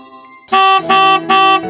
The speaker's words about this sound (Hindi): मार हॉर्न पर हॉर्न मारे पड़े हो,